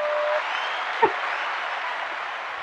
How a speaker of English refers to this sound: And that'll probably be the first and last applaud you ever get on this fucking show